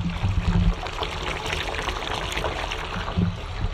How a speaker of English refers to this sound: Definitely hear the bath running.